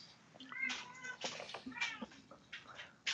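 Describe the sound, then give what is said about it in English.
A cat yowls and screeches in several strained, rising cries, mixed with harsh hissing bursts, fairly loud with no talking, as a dog attacks it in a frantic scuffle. “The dog attacking the cat?”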